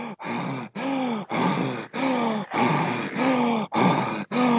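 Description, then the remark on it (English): A person demonstrates heavy, out-of-breath breathing: about eight loud, voiced breaths in a steady rhythm, each a rough, groaning huff separated by brief pauses, with no speech. “So it's not that really fast panting, but it's more of what we call out of breath.”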